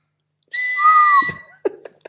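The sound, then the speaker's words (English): A person whistles one loud, sustained, slightly rising blast, imitating a referee's whistle as a stand-in for a sound clip, followed by a few brief, fainter sounds. “We're just going to go with my whistle this week until I can find a sound clip.”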